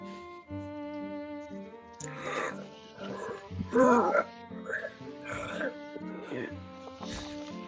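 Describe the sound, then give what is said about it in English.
A voice performs heavy, labored creature breathing: rough, grunting breaths repeating roughly every second, fairly loud, over a steady sustained musical drone. “But you do sort of hear this version of like a labored breathing sound coming from him as he's going through the labor.”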